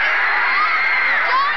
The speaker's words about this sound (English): A great air of expectancy. The crowd has sort of reached a stage of hush now. There's barely a sound. They're screaming now.